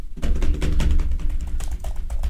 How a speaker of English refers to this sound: Do something on the piano. I'll tap the keyboard. Keys.